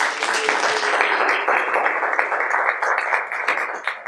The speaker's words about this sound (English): I would like first to thank our sponsors, especially Roxy's, for the venue and the appetizers. Let's have a round of applause.